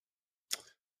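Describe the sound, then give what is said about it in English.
A single sharp keyboard clack rings out alone, bright and crisp, with a short rattling tail, then silence. “As I hear you typing in the background, NES library.”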